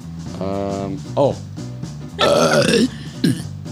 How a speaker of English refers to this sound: Did you burp into the mic?